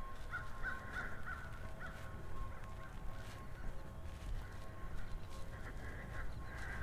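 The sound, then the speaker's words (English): Several crows fly by, cawing in harsh, repeated bursts clustered at the start and again near the end, with birds chirping over steady outdoor background noise and the low mechanical drone of a loud leaf blower in the distance. “Crows flying by, birds chirping, loud leaf blower off in the distance.”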